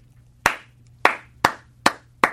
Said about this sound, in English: They call it the Brubaker clap, where one person claps. And then everybody else? I thought it was called a slow clap.